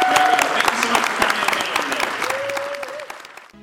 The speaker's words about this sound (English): Now, obviously, you can see this panel could go on for 2 hours, but please give a round of applause to our Dark Knight creators.